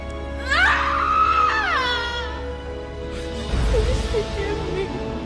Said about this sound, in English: screaming in like anguish and like fear and sadness that like she can't help her friend.